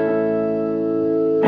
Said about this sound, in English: Right now, I think I got the reverb turned up on it. Here, a little bit of that reverb. Let's see. It's going to come in. It's a little bit of amp reverb, but we're going to max it out